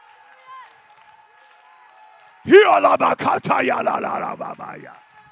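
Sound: audience clapping and shouting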